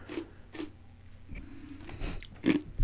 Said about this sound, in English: I apologize to the listeners for chewing ice cubes.